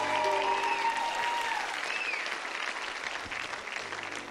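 A church audience applauds steadily as a hand clap of praise to God, a dense wash of many hands clapping at once, with a few sustained tones ringing out in the opening moments before fading under the clapping.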